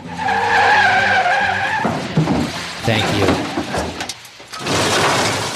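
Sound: car skidding and crashing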